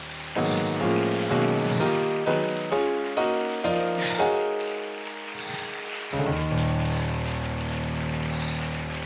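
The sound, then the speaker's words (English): An audience claps steadily in a dense, continuous patter while keyboard or organ chords ring out underneath, stepping through a series of sustained notes before settling on a long held chord. “I wish you'd just clap your hands one more time.”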